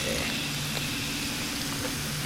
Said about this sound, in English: So without further ado, we got some spiked seltzers. Kanpai. Let's see if we can get some pour sounds. Oh yeah, fizzy.